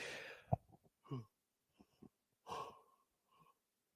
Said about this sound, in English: Yeah, sorry, I don't know why I'm yawning so much.